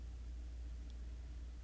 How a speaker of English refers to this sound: Cars driving by.